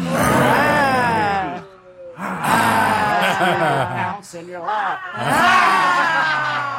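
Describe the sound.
During a laughter yoga session, two voices do the 'lion laughter', imitating lion roars in long, strained, growling bursts: three loud roars with short breaks between them, rough and harmonically rich with rising and falling pitch.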